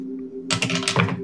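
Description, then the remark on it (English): Dice, rolled so they miss a dice tower, clatter across a hard tabletop in a quick burst of sharp clicks and knocks that tumble for about a second before settling, with no talking. “I missed my dice tower.”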